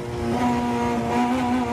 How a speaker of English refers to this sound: The noise inside rally cars is deafening.